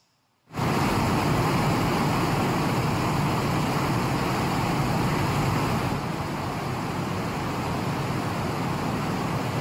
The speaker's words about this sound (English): This is Niagara Falls. 5.5 billion gallons of water an hour flow over the falls. Over 681,000 gallons of water fall just over the Horseshoe Falls every second.